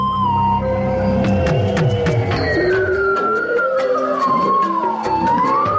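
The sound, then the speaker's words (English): Bowhead whales calling underwater off the coast of Alaska: long, siren-like tones that slide up and down in pitch and overlap one another, over a steady low rumble and scattered sharp clicks, with no talking. “We're listening to the underwater sounds of bowhead whales recorded off the coast of Alaska.”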